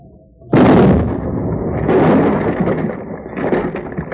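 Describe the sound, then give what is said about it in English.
A sudden explosive charge blast, the last charge set off against a fire in a valley, bursts in after a brief quiet, then a broad, heavy rumble rolls on and swells again in waves for several seconds. “That blast made as much a dent on that fire as a Jersey mosquito on a boulder.”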